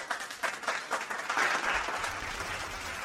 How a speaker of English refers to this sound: Round of applause. Come on! Come on! I want to hear you clap. Clap, clap.